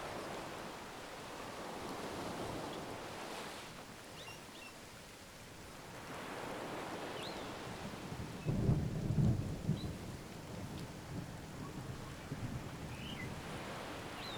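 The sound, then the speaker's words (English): Gentle, steady rain hisses throughout at a beach house on Faraway Bay, with a low rumble of thunder swelling briefly around the middle before the soft patter carries on alone. “As you slowly open your eyes, the beach house, Faraway Bay, and the gentle rain come into focus.”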